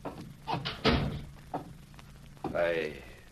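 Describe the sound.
A door being shut, with a few solid wooden thumps and knocks over about a second, followed by a brief, murmured voice near the end.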